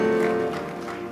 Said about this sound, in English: Somebody give the Lord a clap offering, someone.